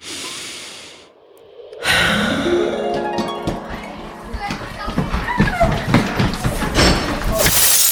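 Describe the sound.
After a moment of soft breathing, a child playing accidentally bumps into a vase, which shatters with a sudden loud crash, bright ringing fragments scattering and clattering as commotion and voices follow.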